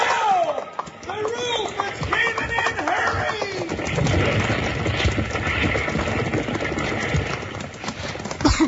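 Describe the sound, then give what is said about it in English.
Horses whinny and stamp in a chaotic rush as they are let loose from a burning livery stable, then a loud, continuous thunder of hooves clattering past over a dense roar of noise. “Bill and Jingles rush in to save the horses, and just as they get them loose, the roof starts to cave in.”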